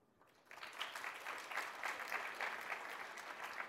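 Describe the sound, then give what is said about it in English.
An audience at a design talk breaks into applause in answer to an age poll after a brief quiet moment, a dense, steady patter of many hands clapping that holds at an even level until the end. “Thank you for clapping for us older folks who have been around the block a few times.”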